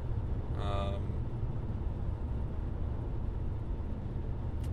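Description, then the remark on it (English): A car drives along a road in Houston in light traffic, with a steady, continuous low rumble of engine and tire noise throughout and a brief tonal sound near the start. “So, I said, I'm on the road. It's nice to a little bit to drive around out here since traffic is really not bad at all.”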